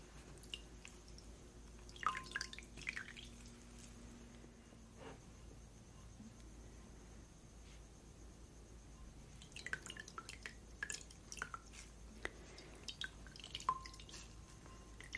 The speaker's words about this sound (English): So I'm gonna soak the washcloth in the water a little bit. Okay, get it some, a little bit damp.